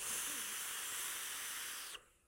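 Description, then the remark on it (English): A freshly primed vape with a single coil on its deck gives a loud, steady airy hiss for about two seconds. A brief high-pitched whistle then squeaks out just as the hiss cuts off, when the mouth is removed. No one speaks. “It's engraved on this deck that if you use a single coil, it'll whistle.”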